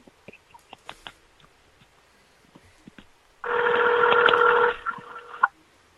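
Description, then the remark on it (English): A phone being dialed: scattered soft button clicks, then a loud, steady electronic tone lasting over a second, followed by a few fainter beeps. No one speaks. “Who you calling? You're calling nobody.”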